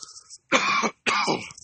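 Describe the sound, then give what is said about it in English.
Two harsh coughs burst out one after another, each loud and broad, with a faint throaty rasp before them and no talking. “Excuse me for a fit of coughing real quick.”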